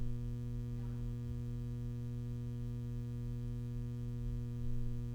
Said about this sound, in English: There's a big hum, Christina. Can you maybe turn that down a little bit or something? Because there's a huge hum.